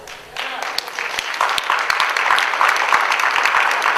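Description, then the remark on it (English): A crowd at an event in Dallas, Texas breaks into steady applause after a brief quiet start, many hands clapping in a dense, crackling wash that holds at an even, fairly loud level throughout. “Yeah, it's okay if you clap for that.”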